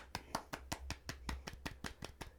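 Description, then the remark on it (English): A soft golf clap: about a dozen light, evenly spaced hand claps in a steady rhythm, quiet and polite, with no voices. “Everybody, golf clap.”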